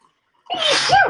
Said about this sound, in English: I'm going to have a sneeze here.